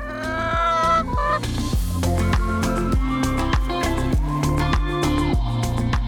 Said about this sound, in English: And then these three guard all of the chickens down here.